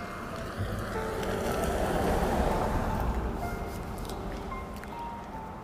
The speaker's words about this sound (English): Let's wait for the car to go by.